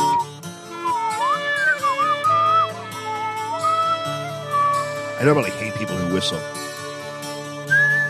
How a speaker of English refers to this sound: Here it comes! I'm going to whistle while I work.